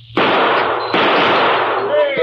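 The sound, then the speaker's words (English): Two loud gunshots crack in quick succession, each followed by a sustained, noisy crash and ringing clatter as Calamity shoots the tops off bottles. “I say there's plenty of time, Calam, for you to knock the tops off a few bottles for us.”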